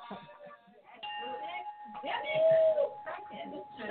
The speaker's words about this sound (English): I got a bell. Hit that liberty bell. Go ahead, girl.